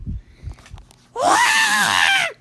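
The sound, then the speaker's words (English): After a second of faint low thumps, a voice lets out a loud, sustained scream lasting over a second, a high, strained shriek imitating someone screaming, before it cuts off abruptly. “And one of the people saw it there, and they screamed.”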